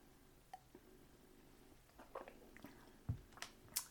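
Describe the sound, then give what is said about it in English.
Someone takes a quiet sip from a drink: soft wet mouth sounds and a swallow, then a light knock as the cup is set down. No one speaks. “I'm just going to have another sip, sorry.”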